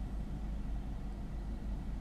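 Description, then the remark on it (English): A car engine with a new exhaust idles steadily while warming up, a low, continuous rumble, fairly quiet, with no other sounds or voices. “I don't know whether it's just my car warming up with my new exhaust and just being a little bit stinky, or if it's something else.”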